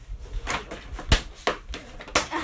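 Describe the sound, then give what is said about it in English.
Colored pencils from a giant pack of 130 colors, Root Furner Oily Color Pencils, clatter and click as they are handled, with several sharp wooden knocks and rattles arriving irregularly over a couple of seconds, no voices present. “Like, I have a really giant pack of them. 130 colors, and I cannot find it. I'm getting it right now.”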